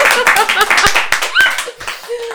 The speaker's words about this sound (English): Guys, clap. There are so many people in the room. Clap!